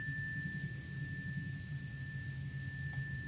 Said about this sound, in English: Just let any fears, doubts, concerns, thoughts rise to the surface. I let this next chime wash them off of you, away, away, away, away from you.